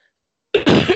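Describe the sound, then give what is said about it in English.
A sudden throaty cough bursts out after half a second of silence, a short harsh burst followed by a longer rasping clear of the throat. “Don't worry, that wasn't a cough for”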